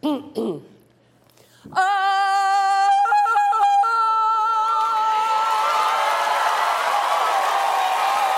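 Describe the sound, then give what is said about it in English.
A brief spoken sound, then a long, loud Tarzan yell on a TV show with Carol Burnett, with warbling yodel-like breaks in pitch, sustained for several seconds as a crowd's laughter and applause swell underneath. “Excuse me, but that's my Tarzan yell.”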